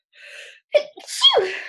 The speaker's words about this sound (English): Bless you. I sounded like Minnie, my little baby sneeze with my Minnie. That was an adorable sneeze.